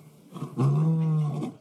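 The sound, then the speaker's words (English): A single deep, powerful lion roar swells up loudly and holds for about a second before tapering off, resonant with no talking. “it's when they get isolated because of the lion's roar”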